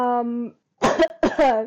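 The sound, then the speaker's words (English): A brief voiced hum, then two loud, harsh coughs into the microphone, each burst hitting the level ceiling and distorting. “The microphone is always peaking every time I cough.”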